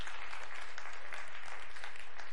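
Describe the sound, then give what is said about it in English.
Sustained applause from a large church audience during a sermon, a dense, steady wash of many hands clapping at once with no pauses and no voices standing out. “I appreciate your applause, so now let's come to God and seek his face for the answer.”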